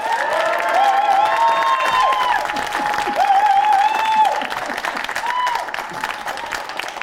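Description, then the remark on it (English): A live audience welcoming the politician Edwina Currie breaks into loud, sustained applause with cheering and whoops rising above the clapping, the dense applause continuing steadily for several seconds before easing slightly. “Please give a huge welcome to Edwina Currie!”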